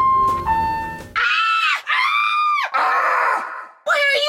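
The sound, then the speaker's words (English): A short, thin electronic melody, elevator-type music played by a computer, gives way to a person screaming loudly in several long, strained bursts with brief breaks between them. “Because you're screaming! Why are you screaming?”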